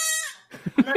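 A goat with a man lets out one drawn-out, nasal bleat, then makes three short, choppy bursts of sound in quick succession. No one is talking.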